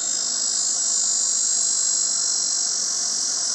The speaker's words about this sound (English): I'm sitting here under a tree, and you know, it's the end of summer, and I'm hearing this noise, and apparently it's a cicada call. Listen.